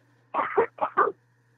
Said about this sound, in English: I'm going to cough for a second. I'm going to announce that you can edit me.